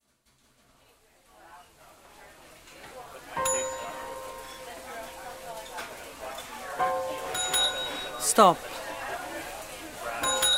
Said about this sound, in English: Stop ringing. Stop ringing the bell, JP! I need service now!